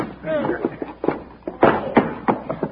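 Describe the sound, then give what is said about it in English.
A pistol-whip blow to the head: several sharp, dull thuds land in quick succession, mixed with strained vocal grunts and exclamations rather than clear speech. “Pistol whip.”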